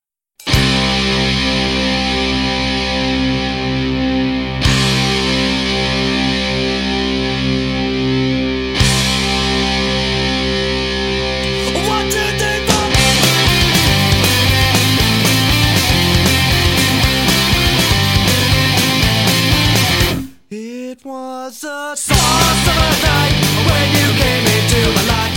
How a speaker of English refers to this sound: That said, it does start off with three kind of long held out guitar strums, like they're fucking rock stars, you know, and a quick 1, 2, 3, 4. And then everything comes crashing in. It's fantastic with this great guitar riff.